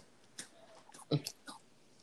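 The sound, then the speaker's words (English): Someone munching on carrots from a bag: a handful of crisp, crunchy bites in an irregular rhythm, the loudest in the middle, over a faint background murmur. “What you eat munching on over there?”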